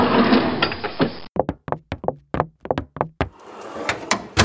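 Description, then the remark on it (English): A bottom desk drawer holding hanging files rumbles as it slides, then a quick irregular run of sharp wooden knocks and thumps follows before another rough scraping slide, with no talking. “One of these days, I've got to figure out how all those little guys get into my bottom desk drawer with all my hanging files.”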